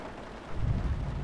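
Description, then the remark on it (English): Steady rain falls in a dense, hissing wash, and a low rumble swells in about halfway through and keeps going underneath it. Nobody speaks. “As the rain fell, Phoebe and Penny joined their parents for dinner at the greenhouse.”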